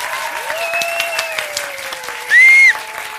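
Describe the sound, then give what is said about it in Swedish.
An audience claps steadily for a few seconds to vote for a woman in a green blanket to win a goodie bag, a dense patter of many hands, with a long whistled tone running underneath and a brief, loud, shrill whistle near the end. “Ni som tycker att kvinnan med grön filt ska vinna, applådera nu.”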